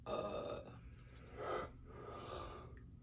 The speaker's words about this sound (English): You're making me yawn.